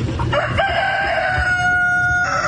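A rooster crows loudly, one long drawn-out cock-a-doodle-doo with a strained, wavering pitch, holding steady for over two seconds with no talking. It answers a little boy who asked it whether it has heard of Chick-fil-A.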